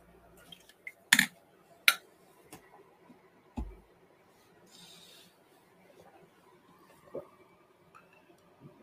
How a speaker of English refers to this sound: Let me get a sip of water real quick.